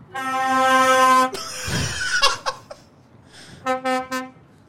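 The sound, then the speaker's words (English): A truck horn sound effect: a loud, sustained air horn blares for over a second, followed by a rumbling whoosh and a few sharp clanks, then two shorter horn blasts sound again. “He's like, is there a truck coming through here?”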